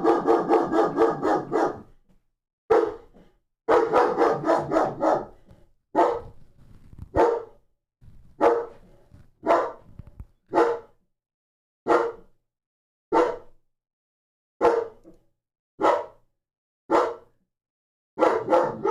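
A puppy barks repeatedly, a dense flurry of yappy barks at first, then evenly spaced single sharp barks about once a second, loud, with no talking.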